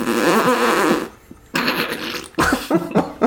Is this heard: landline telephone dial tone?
no